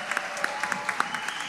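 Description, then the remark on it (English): A round of applause for Donnie Betts and everyone who was part of the production, with many hands clapping in a dense, steady patter of sharp bright claps, moderately loud and sustained without any voices. “And also, let's give another wonderful round of applause for Donnie Betts and everyone who has been a part of this production.”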